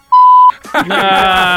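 A single loud, steady censor bleep, a pure high tone lasting under half a second, cuts off abruptly before a person's voice comes in with a drawn-out sound.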